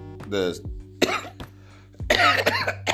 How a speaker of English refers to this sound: See what I mean? I'm coughing because I had bronchitis.